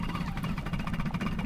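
A two-cylinder Evinrude outboard boat engine idles steadily with a low, chugging, rhythmic pulse and a faint rattling vibration, running continuously without any voices.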